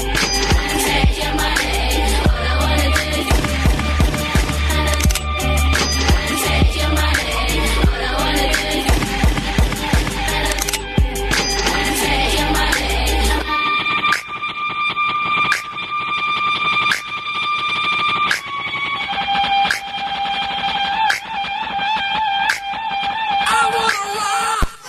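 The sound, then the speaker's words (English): A hip-hop track plays loudly with no talking, heavy bass and a driving beat at first, then thinning midway into a sparser section of sustained synth tones punctuated by sharp hits. “…, it's your song of the night.”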